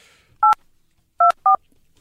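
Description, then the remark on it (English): Three short keypad tones from a telephone being dialed, each a clear dual-pitch beep, the first alone and the last two close together, with a faint hiss in between and no talking. “Let's dial them now.”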